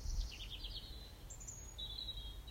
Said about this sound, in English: And there are birds flying around me, calling out, reminding me that the world is so much bigger than just me.